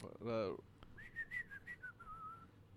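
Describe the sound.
In a kids movie, Jack Black whistles a short, bouncy rock song melody of about eight notes that rise and fall, right after a brief loud vocal burst.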